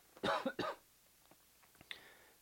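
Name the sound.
coughing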